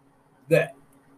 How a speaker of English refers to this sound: Sorry, I was trying not to burp when I said.